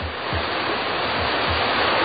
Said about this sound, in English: Pumpers are ready. All the hoses coupled up. We'll flood that thing with water from all angles. All right, here's the signal. Open them up! Full blast!